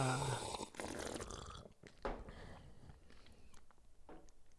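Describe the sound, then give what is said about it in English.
A quiet slurping sip of hot coffee, with a soft gulp and faint rustling around it, and no one talking. “Well, here's that sip.”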